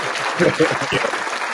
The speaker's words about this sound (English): Premature clapping. It's a touch screen.